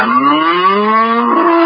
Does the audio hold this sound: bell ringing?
no